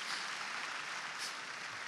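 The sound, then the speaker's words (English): An audience claps together in praise, a dense, steady wash of many hands at even loudness throughout, with no voices standing out. “Come on, let's give the Lord a hand clap of praise, ladies and gentlemen.”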